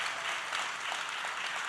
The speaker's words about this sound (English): 8, now you got to see this because you were clapping like, yay, but now I'm going to ask you to change times.